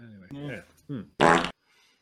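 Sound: fart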